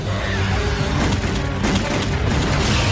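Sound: cannon fire boom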